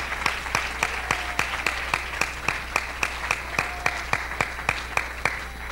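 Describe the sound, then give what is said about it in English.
An audience claps their hands to the Lord in unison, with sharp, steady rhythmic beats about three to four per second, over a constant wash of scattered clapping. There is no speech. “Oh, let's clap our hands to the Lord.”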